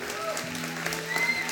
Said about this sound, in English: Come on, let's give the Lord a clap. Amen.